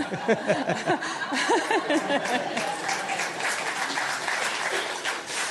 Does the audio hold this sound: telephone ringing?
no